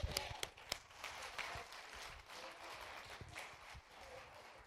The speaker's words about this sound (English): Amen. Get a lot of hand clap.